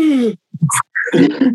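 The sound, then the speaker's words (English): A voice imitates someone waking at night gasping for breath, as with sleep apnea: a falling groan followed by a few short choked gulps and a strained, rasping intake, fairly loud, with no other talk. “So a lot of people will wake up gasping for breath.”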